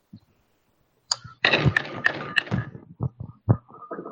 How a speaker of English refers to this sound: That was knocking on wood as hard as it was comfortable to.